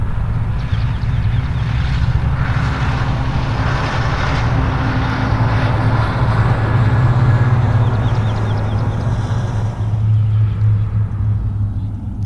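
A large truck heading to the dump rumbles past with a deep, steady engine drone that swells slightly around the middle before easing off. It is loud and continuous, with no voices.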